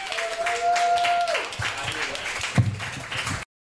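An audience breaks into steady, dense applause lasting a few seconds, with a sustained whistle-like tone over the first part before the clapping thins and stops abruptly.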